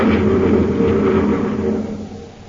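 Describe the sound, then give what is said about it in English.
A steady, loud engine drone of the Space Patrol surface car driving through a mountainous region of Mars, with a low hum and gritty midrange rumble, holding constant before easing off and fading slightly at the end, with no voices. “Buzz and Happy are in the surface car driving through a mountainous region of Mars after interviewing an amateur astronomer named Rudolph Gannett.”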